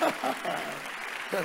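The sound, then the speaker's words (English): An audience claps steadily for the Lord, a dense wash of applause lasting the whole moment, while voices call out loudly over it at the start and again near the end. “Give the Lord a better clap of him.”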